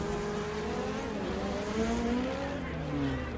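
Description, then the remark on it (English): Street race car engines roar and climb steadily in pitch as they accelerate hard, neck and neck in the race between Jesse and Johnny Tran. Several overlapping engine whines are sustained loudly for the whole stretch. “The cars are neck and neck.”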